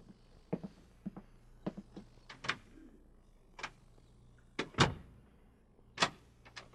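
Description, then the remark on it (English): A door thuds shut, followed by a scattered series of sharp metallic clicks and clunks as a lock is worked, all over a faint low hum: Klaatu's hospital room door being locked at Walter Reed Hospital. “The door will be locked.”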